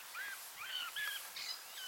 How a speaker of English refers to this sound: There's definitely black bird in there, isn't there? It's not pleasing to hear the wrong variants of bird song.